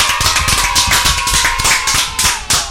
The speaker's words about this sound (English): Applause.